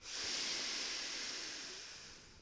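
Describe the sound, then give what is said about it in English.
A single long, airy exhale through the mouth after a breath in through the nose, part of a guided breathing exercise; a steady breathy hiss lasting a couple of seconds and tapering off slightly at the end, with no talking. “And what we'll do is 3 breaths in through the nose and out through the mouth, starting in 3, 2, 1.”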